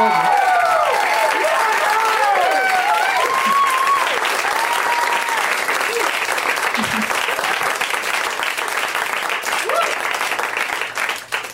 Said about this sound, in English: Please give her the fucking applause that she deserved at the end of that.